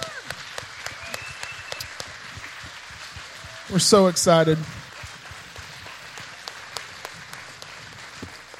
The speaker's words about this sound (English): Can we give the Lord a hand clap?